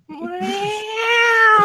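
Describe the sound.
A person imitates a cat's meow, holding one long, drawn-out, slightly rising wail for under two seconds, fairly loud, with no other sounds around it.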